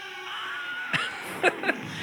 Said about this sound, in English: And it, actually, Ben Burtt, the sound designer of Star Wars, that's kind of his trademark. Any movie that he does, he puts that scream in there. You know, sometimes a little too many times, but everybody recognizes that scream.